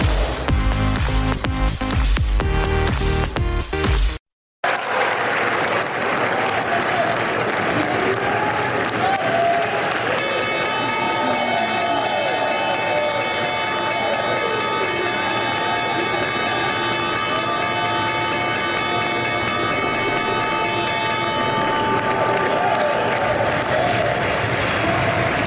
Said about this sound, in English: the Australian Treasury Department there ringing the opening bell on Wall Street.